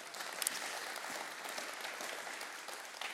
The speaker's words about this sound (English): We can clap about that.